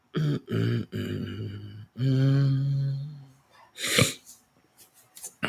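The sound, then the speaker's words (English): Sniffling: one sharp, loud nasal burst after a stretch of wordless vocalizing, followed by a couple of quieter sniffs near the end. “Y'all excuse my sniffling.”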